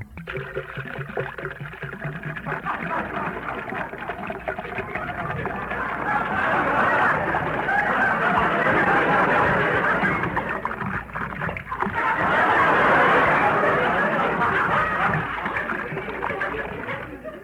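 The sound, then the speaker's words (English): Water pours into a tall glass in a long, steady, splashy stream that swells louder twice before easing off, with no one speaking over it. “Well, I'll pour myself a glass of water.”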